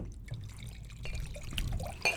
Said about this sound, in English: Now watch out. You poured quite a bit there